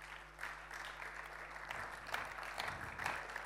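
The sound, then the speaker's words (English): A crowd applauds the people with expertise who shared that night, steady dense overlapping claps forming a sustained, even wash of sound with a few sharper individual claps standing out, and no voices over it. “How about we give them all another great big round of applause?”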